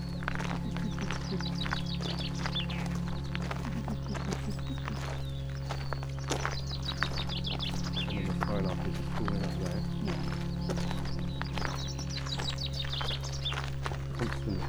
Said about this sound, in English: So that's a chaffinch, just saying.